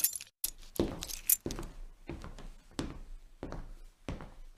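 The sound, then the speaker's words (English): Keys jangle and clink in a series of short metallic bursts, with bright rattling jingles repeating irregularly for several seconds as they are handled and handed over. “Right, let's have these keys.”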